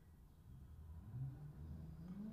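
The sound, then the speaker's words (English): A steady low engine rumble fills a hot car interior, as if the car is moving, with a faint droning hum that rises slightly in pitch partway through. No one speaks. “It's hot as fuck in this car, but whatever.”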